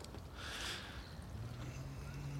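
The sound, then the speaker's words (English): A boat on water: a steady wash of water noise with a brief splashy surge near the start, and a low motor-like hum rising underneath. Fairly loud, with no talking. “Right now I'm here on a water. It's like a boat. And I love how this boat is floating.”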